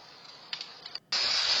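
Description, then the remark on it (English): A steady, hissing sizzle like oil boiling on a burning engine, with a few crackling swells, a brief drop to near silence, then a louder, sustained roar of hiss. No talking. “That's the engine catching. Listen, you can hear the oil. You can hear boiling.”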